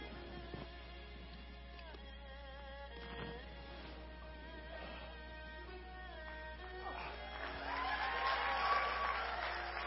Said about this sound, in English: And I want to hear you guys scream and cheer and shout as I get this one down, okay?